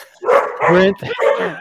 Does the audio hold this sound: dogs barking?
yes